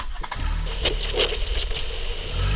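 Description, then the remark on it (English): A compact car's engine rumbles with a deep, steady drone, punctuated by a few brief clicks and rattles, and the revving swells slightly toward the end. “But the compact car is pretty packed today because we also have the polar bear joining us.”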